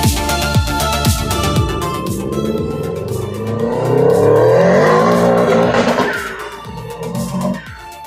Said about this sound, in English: Those car sounds were from the vault from Jackson. He sent those in from the land down under, from Australia.